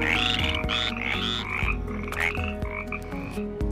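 A chorus of common brown frogs croaking steadily, many overlapping purring calls, fairly loud, with no voices.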